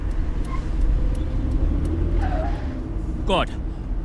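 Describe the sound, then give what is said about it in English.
A steady low rumble of a car moving along a road fills the whole clip, with a brief rising whine near the end and faint background chatter. “All right, well, I'm going now.”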